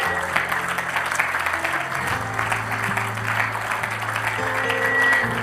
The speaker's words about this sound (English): Oh, come on, clap your hands unto the Lord tonight.